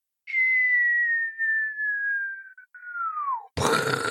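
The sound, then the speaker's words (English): A person whistles a long, steadily falling tone, imitating a dropping bomb. The pitch sinks over about three seconds, then a sudden loud, noisy burst follows, like a mouth-made explosion. “I need one that's just like a bomb falling, like.”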